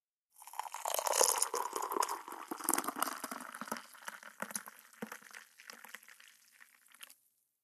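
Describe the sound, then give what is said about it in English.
Coffee pours steadily into a cup, a bubbling liquid stream that starts strong, gradually thins and trickles off after about seven seconds. No one speaks. “Pour yourself a cup of coffee and let's get started.”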